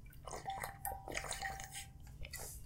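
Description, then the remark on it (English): Someone drinking water in a series of soft gulps and swallows, with small wet clicks and slurps spaced unevenly over a low steady hum. No talking. “I'm just going to drink some water because my throat is really dry.”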